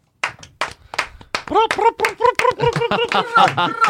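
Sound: hand clapping applause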